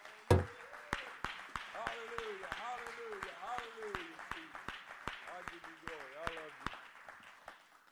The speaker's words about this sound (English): If you all believe that he's going to do the miraculous, why don't you clap your hands like you expect him to do it?